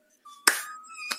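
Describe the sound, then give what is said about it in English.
A slow clap: two sharp, separate hand claps about two-thirds of a second apart, the first louder, over a faint sustained ringing tone in the background. No one speaks. “Slow clap, sir.”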